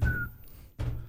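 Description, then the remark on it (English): Two heavy, booming knocks on a wooden surface, muffled, separated by a short pause, with a faint thin whistling tone briefly at the start. “Sorry for everyone's ears getting hammered by it's all right. Touching wood.”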